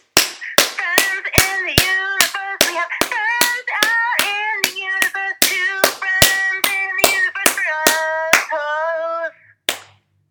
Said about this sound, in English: Okay. Yeah, extra clap. You got the extra clap in. You got to get that extra clap.